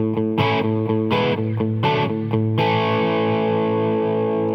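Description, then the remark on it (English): Distorted electric guitar chords in the key of A changing in a quick rhythmic pattern over the open fifth string A sustained as a pedal tone, ending on a long ringing chord that slowly fades. “For example, I'm going to play some chords in the key of A, and I'm going to sustain the fifth string A open in all of the changes.”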